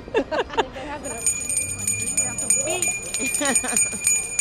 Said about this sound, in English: And I think I see some bell ringers over there. Yes, let's go chase after them.